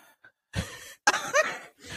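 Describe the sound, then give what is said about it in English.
A sharp, breathy gasp cuts in abruptly, preceded by a softer rush of breath, forming two quick airy bursts with no speech. “I heard your gasp, so I really want to hear your response back to this one now.”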